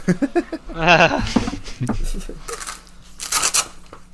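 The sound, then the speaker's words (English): Clattering and rummaging as dice are grabbed and rattled, with bright clicky bursts toward the end, while a person talks briefly over the handling noise. “Oh, hang on! I need dice! Hang on.”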